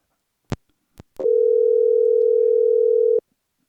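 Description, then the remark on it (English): Three sharp clicks, then a steady, loud telephone tone hums for about two seconds while a call connects, stopping abruptly. No one speaks. “All right, so now I can't hear you, but you guys still hear me, or you can hear the phone call.”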